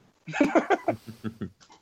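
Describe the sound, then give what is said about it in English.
A dog growls in a run of short, rumbling bursts, about six pulses in quick succession, moderately loud, then tapering off into softer grumbles. “All I'm hearing is growl, growl, growl, hiss, growl.”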